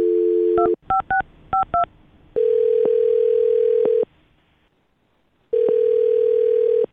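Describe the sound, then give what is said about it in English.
A brief dial tone gives way to a quick run of keypad beeps, followed by two long ringback tones with a pause between them, as the radio show Brook and Jubal in the Morning places an outgoing phone call. “So we're about to get him on the phone and find out what happened.”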